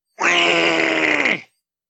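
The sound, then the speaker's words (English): A man voicing the Penguin lets out one loud, strained cry of pain after the Joker stabs him through the hand with a knife, held for just over a second with a rough, harmonic tone before his voice sags and cuts off. No one speaks. “The penguin starts to scream in pain again.”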